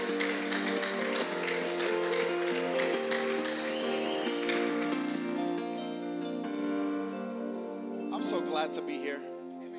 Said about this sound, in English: Come on, give God a hand clap. Put your hands together this morning.